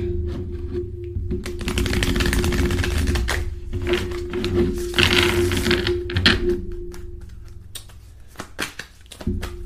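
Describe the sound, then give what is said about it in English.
Steady riffling and slapping of tarot cards being shuffled for several seconds, with dense papery crackles that ease off into a few scattered taps near the end; no one speaks. “I almost dropped them.”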